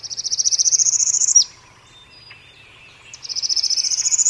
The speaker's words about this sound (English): A northern periola sings its rapid rising trill.